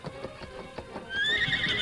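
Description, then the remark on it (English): A few soft hoof clops lead into a loud, high horse whinny that rises and holds near the end, with no talking. “Moving cautiously, he made his way to where the horses were tied.”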